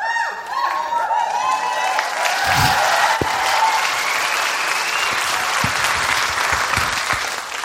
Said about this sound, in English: Welcome Tig Notaro, everybody. Tig. Tig Notaro. Pete Notaro. Just bathe in it. Let it wash over you. What? That applause. They're so happy to see you.